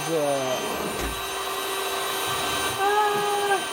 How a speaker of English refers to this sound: There's a vacuum. It's vacuuming time. Is happening.